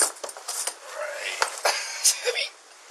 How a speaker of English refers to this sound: Within the second bag, there appears to be a... They look quite heavy. Oh, it's got coins.